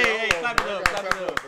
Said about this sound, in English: Clap it up. And thank y'all for all the support, all the love.